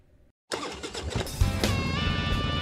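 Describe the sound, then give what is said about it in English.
After a brief pause, a motorcycle engine is kickstarted, roars to life and revs up, its rising mechanical whine loud, with no voices present. “Kickstart that engine and roll thunder with the pack.”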